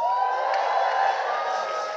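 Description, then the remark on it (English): An audience at a resurrection service shouting and cheering together, a dense, sustained roar of many raised voices with some high whoops, loud and steady for the full two seconds. “Those who are not shouting, it's like they don't believe that Jesus is dead.”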